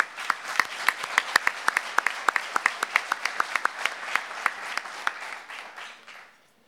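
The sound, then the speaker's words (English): An audience applauds for several seconds, with many hands clapping in a dense, steady patter and a few sharper claps standing out before the applause thins and fades away. “And I think we can give them a round of applause for what they are doing, serving the global community.”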